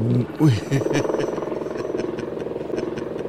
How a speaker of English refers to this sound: Here comes the helicopter coming for me again.